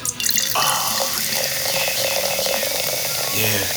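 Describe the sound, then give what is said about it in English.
Liquid pours steadily into a cup next to the microphone, a continuous splashing, gurgling stream with a rising pitch as the cup fills, lasting a few seconds with no talking. “Can you just pour a little bit in the refreshing? Cup next to the mic.”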